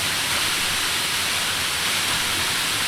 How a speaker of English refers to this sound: He's waiting for rain? Oh, yeah, it starts raining.